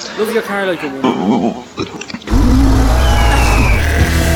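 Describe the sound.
A voice speaks briefly, then a loud car engine suddenly roars to life and keeps revving steadily until the end.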